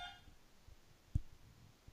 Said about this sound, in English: Yeah, sorry, that was my buzzer in my apartment.